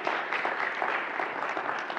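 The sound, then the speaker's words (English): A crowd at a church worship service applauds steadily as a round of applause for God, many hands clapping in a dense, continuous wash of sound at an even, fairly loud level with no voices standing out. “So how about a round of applause for God?”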